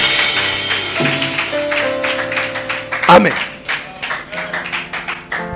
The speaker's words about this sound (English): Clap for him.